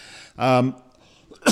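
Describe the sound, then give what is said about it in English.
A cough: one rough, voiced burst, then a short breathy burst right after a brief pause. No speech around it. “now I'm coughing.”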